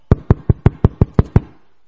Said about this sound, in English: In the middle of the night, his friend came to knock.